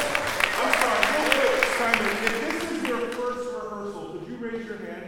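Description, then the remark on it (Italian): At a chorus rehearsal, a group bursts into steady, dense clapping for about three seconds to thank those who came, then the applause thins and fades as a voice begins talking over the tail end. “We should give a round of applause for coming today.”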